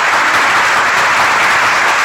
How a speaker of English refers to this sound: Let me give them a roaring round of applause down there, ladies and gentlemen.